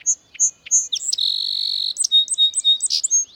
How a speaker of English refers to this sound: This is Bird Note. Almost anywhere in the United States, you can hear the song sparrow. People across the country have recorded this sparrow, one bird singing the same song in thousands of different soundscapes.